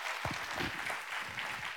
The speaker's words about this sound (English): He got them all, give him a big round of applause.